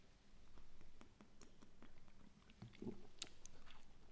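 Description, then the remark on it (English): Quiet sips of beer: soft wet slurps and swallows broken by small mouth clicks and a faint clink near the end, with no one speaking. “Let me have another sip of this beer before it goes warm.”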